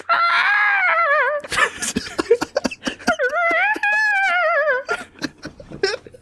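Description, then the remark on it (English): A voice imitates the shrill, screeching squawks of demonic flying creatures, a flock of 'speed gulls' in the sky, said to sound like a sky horse: two long wavering cries with a warbling pitch, broken up by short clicks and gasps, loud and alone. “Before you can do anything, you start to hear some demonic squawks from the sky.”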